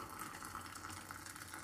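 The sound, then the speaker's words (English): A steady stream of just-boiled water pours into a glass cup to make fruit tea in the morning, a continuous splashing hiss with a low gurgling undertone and no voices. “I will show you a bit later because I just boiled the water.”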